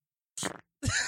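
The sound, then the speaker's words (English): A voice imitates a weak fart with two short, sputtering mouth noises, separated by a brief pause. The sounds are fairly loud, with no speech around them. “What if the guy did all of the work to get there, and he couldn't do, like, a huge, big rip fart? All he could do was, like...”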